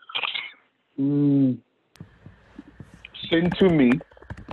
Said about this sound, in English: We can hear you typing. You unmuted your mic. You can just go ahead and tell me on the mic.